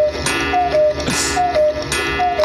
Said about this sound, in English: we're talking about how my life has changed forever because we got a cuckoo clock